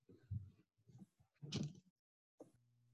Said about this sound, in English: close this door real quick.